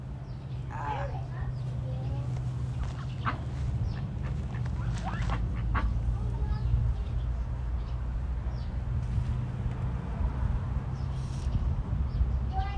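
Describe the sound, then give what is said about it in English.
Nine ducks quack in quick, scattered bursts, busiest in the first half, over a constant low rumble, with indistinct human voices now and then. “Nine ducks? There used to be more.”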